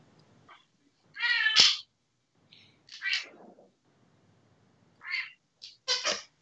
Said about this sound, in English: Yep, all cats making noise. Good job, cats. Good job, cats.